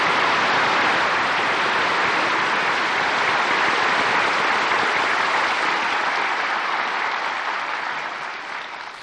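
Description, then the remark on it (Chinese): A large audience applauds to welcome Supreme Master Ching Hai to speak, clapping in a dense, steady roar that holds for several seconds before gradually tapering off at the end, with no one speaking over it. “现在请各位来宾以最热烈的掌声恭请上清下海无上师为我们开示。”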